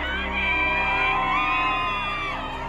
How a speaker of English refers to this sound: Outside the Virginia courthouse, Depp fans gather to cheer on their hero.